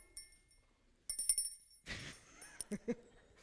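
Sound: hand bell ringing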